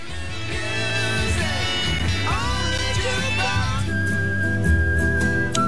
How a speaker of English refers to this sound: How about a little whistling music? Sure, we're up for that.